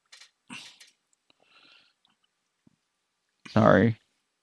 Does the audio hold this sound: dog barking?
yes